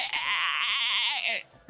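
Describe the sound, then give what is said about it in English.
A human voice imitates the shriek of a wounded creature during a tabletop role-playing game: one sustained, strained, high-pitched wail lasting over a second, wavering and warbling, then cutting off abruptly into quiet. “It is still standing as it just shrieks, just...”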